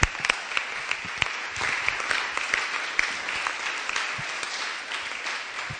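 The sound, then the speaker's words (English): An audience applauds, cheering a woman as she leaves, in a steady, dense wash of clapping that runs the whole time, with sharper individual claps popping out here and there and no one speaking. “Come on, give her a cheer as she goes.”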